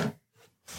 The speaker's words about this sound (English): Most of the time it's y'all creaking and cracking. It's mostly me. All these chairs creaking and cracking.